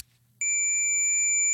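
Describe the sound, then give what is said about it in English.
After a brief hush, a Tamagotchi toy lets out one loud, piercing beep as its battery pull tab is pulled out, starting abruptly and holding steady on a single high pitch for about a second. “Well, it beeped.”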